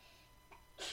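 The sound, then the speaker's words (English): A quick intake of breath, then a sudden breathy sneeze bursting out at the very end, not loud, with no talking around it. “Bless you.”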